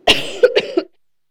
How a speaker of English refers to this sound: Because I'm going to cough and I don't need it to blow everyone's brains out.